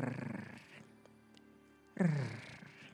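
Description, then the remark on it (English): A voice makes two guttural, growly bursts, one at the start and a louder one near the end, a failed attempt at a rolled R that comes out like a small roar, with quiet between. “That was a roar then.”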